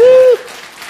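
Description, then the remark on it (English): A crowd cheers, opening with a loud sustained whoop that cuts off sharply, followed by a softer wash of clapping and crowd noise. “So we should cheer really loud so he can hear us all the way down in San Diego, huh?”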